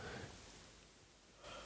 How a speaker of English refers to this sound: Sorry, I keep yawning.